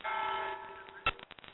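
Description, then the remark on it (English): A church bell tolls once at the top of the hour, its ringing tone hanging in the air and slowly fading, fairly faint, followed by a few soft knocks and handling noises. “Yeah, it's ringing in the church here.”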